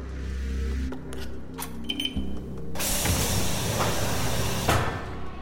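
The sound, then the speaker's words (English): A low hum with a few sharp clicks and clunks, like a latch or handle working, then a broad rush of noise as a door swings open, lasting to the end. “Hold on, I'll get the door.”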